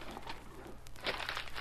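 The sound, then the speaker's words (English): Paper crinkles and crumples in short, irregular bursts of rustling, quiet, with a stronger scrunch near the end and no voices. “What's that paper?”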